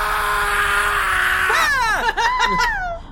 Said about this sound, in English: And then you hear a shriek.